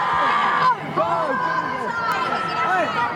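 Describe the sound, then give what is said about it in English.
Children shriek and squeal with excitement as a child receives boots from a Swedish player after Sweden reach the Women's World Cup semi-finals, high-pitched voices overlapping in a loud, continuous burst of screaming and excited chatter that barely pauses for about three seconds. “Have you ever thought that receiving a piece of kit from a player could cause, I think that's happy screams. I hope that's happy screams.”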